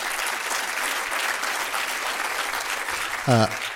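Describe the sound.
An audience claps steadily in a dense, even round of applause welcoming a speaker at a session, then a brief voice with rising pitch cuts in near the end.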